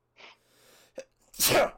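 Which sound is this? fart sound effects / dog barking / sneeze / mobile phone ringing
sneeze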